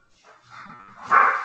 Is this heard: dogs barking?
yes